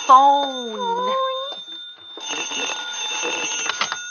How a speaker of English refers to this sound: We'll answer the phone together.